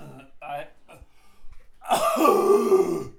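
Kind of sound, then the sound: human body sound, coughing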